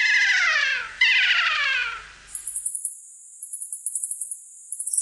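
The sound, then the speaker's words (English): Two loud, harsh calls of a New Zealand kea slide downward in pitch, one right after the other, then give way to a run of very high, thin New Zealand rifleman peeps in quick, uneven bursts. “The North Island brown kiwi has just joined New Zealand's kea and riflemen in a select club of birds that have had their complete genome sequenced.”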